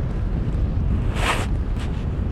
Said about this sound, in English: Right now there's a nice gust that I can feel. It's saying, okay, time to get going and rig up the kite.